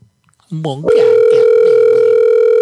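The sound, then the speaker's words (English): A loud, steady ringing tone of an outgoing telephone call comes in after a brief voice and holds unbroken to the end, clear like a phone line heard through a handset. “All right, I'm going to get somebody on the damn phone.”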